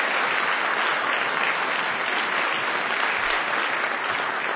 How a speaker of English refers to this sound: And I just would like to invite one more round of applause for Bob Rosenkranz for making this possible.